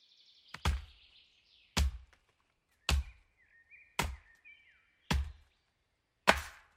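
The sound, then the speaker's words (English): An axe chops into trees six times in a steady, evenly spaced rhythm, each stroke a sharp, heavy chop, with faint bird chirps between the blows. “After a long day of chopping trees and removing orcs' heads from their shoulders, I work up a mighty thirst.”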